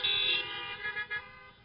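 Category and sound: vehicle, car horns honking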